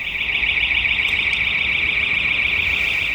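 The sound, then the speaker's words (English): A house alarm three doors down, tripped by someone and left ringing because no one can turn it off, rings continuously with a steady, piercing high-pitched tone, sustained and unbroken throughout, with no one speaking. “Because the alarm from the house three doors down, someone's tripped it, haven't they? And no one can turn it off.”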